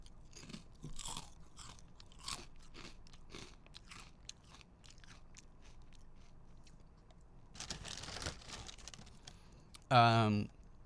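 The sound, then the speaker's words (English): Crunching of someone chewing Cinnamon Toast Crunch cereal, square pieces coated in powder, a steady run of sharp bites and munches, followed by a denser burst of crunching and a brief hummed vocal sound near the end. “I have Cinnamon Toast Crunch, and so I'm gonna do one of my famous taste tests.”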